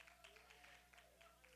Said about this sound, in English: She doesn't need any more clapping, please.